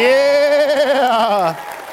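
Audience cheering rings out at a stage show as a performer is introduced and comes on stage: a loud, drawn-out whooping cry with a wavering pitch, lasting about a second and a half before cutting off abruptly into quiet.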